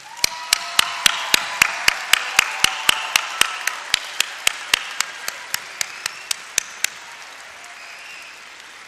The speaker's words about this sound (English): Graduate 2005, please give another round of applause to your families.